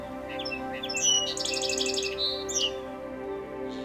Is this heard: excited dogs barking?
no